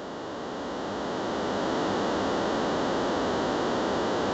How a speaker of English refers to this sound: You're staticky right now. I'm staticky right now. There was just like 3 seconds of straight static, so I don't know what happened.